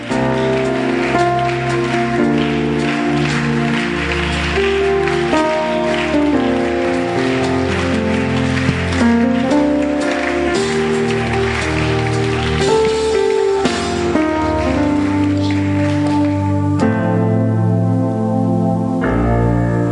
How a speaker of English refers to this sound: Oh, put your hands together and keep clapping as they come. keep clapping. Keep clapping.